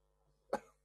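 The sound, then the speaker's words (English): A single short, wet cough bursts out from someone choking on their own phlegm, rough and phlegmy, over a faint steady hum, with no talking. “I'm choking on my freaking own phlegm at the moment.”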